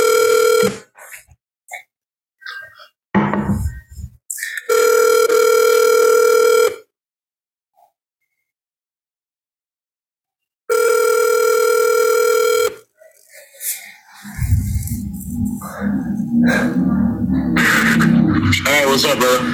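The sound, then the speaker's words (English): An outgoing phone call to a movie director rings back: steady, loud, tonal ring bursts, two long ones separated by a silent gap, then the line gives way to a muffled voice and background noise. “Okay, let's call. I've called this guy before. He never picks up.”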